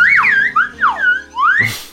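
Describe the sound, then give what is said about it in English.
A slide whistle swoops up and down in several quick, loud glides, rising and falling pitch in a playful wavering run, ending in a brief burst of noise. “They had to bring the slide whistle.”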